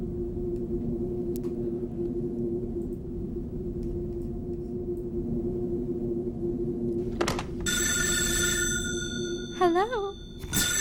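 In the trailer for the 1999 film Audition, over a steady background rumble, a telephone starts ringing in the last few seconds with a bright, electronic-sounding tone that warbles briefly near the end.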